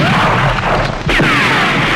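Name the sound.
gunshots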